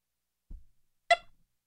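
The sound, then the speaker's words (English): A single short electronic chirp from a smoke detector with a low battery rings out sharply after a soft low thump, then silence. “Whoa, the smoke detector battery's going off.”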